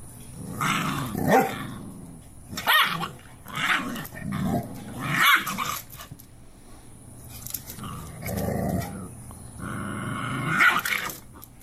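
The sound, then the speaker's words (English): A large mother Cane Corso dog growls and snarls in repeated rough bursts while disciplining her puppy, punctuated by a few sharp barks, fairly loud, with no talking over it. “This mama dog disciplining her dog who's”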